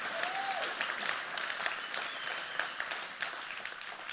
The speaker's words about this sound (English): Can you guys give a round of applause to The Rock and to Bill Young? Huge.